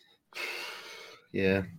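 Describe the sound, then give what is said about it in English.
Someone mimics a snore: a long, raspy drawn-in breath followed by a short, buzzing, throaty snort, one cycle only, with no other talking. “Yeah, you just hear distant snores.”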